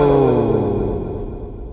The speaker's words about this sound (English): I forgot to see if my echo machine is working. Here is an echo.